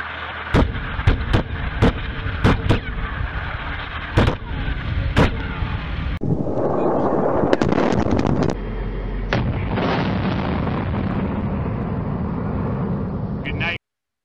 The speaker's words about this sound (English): It was missing explosions. So we've decided to add a bunch of explosions, make it more interesting for everybody, including him. For your viewing pleasure. Yeah. Enjoy these explosions.